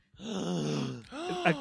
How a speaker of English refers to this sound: A gasp from everyone in the room.